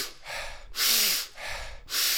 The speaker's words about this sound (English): the first 30 seconds of the 90 off, I'll do Wim Hof style breathing, mouth, mouth